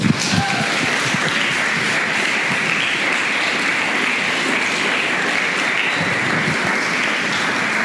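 A live storytelling show audience claps steadily and loudly for several seconds to welcome the next storyteller, a dense wash of many hands with no pauses and no voices rising above it.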